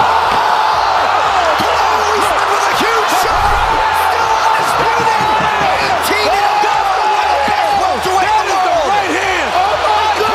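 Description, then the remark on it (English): A sold-out UFC arena crowd of 15,000 roars continuously and loudly for about ten seconds as welterweight champion Kamaru Usman lands a knockout punch on Jorge Masvidal at UFC 261, a dense wall of cheering with scattered whoops and shouted voices rising and falling through it. “But when UFC welterweight champion Kamaru Usman lands a punch in front of a sold-out crowd of 15,000, it definitely makes a sound.”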